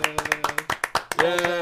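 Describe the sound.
A handful of people clap in a quick, uneven patter, sharp close claps overlapping loosely, with a voice joining in over the last stretch.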